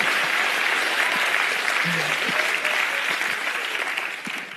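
Sustained applause from an audience at a comedian's performance, clapping for people with disabilities, a dense wash of many hands clapping at steady loudness for several seconds before tapering off slightly at the end.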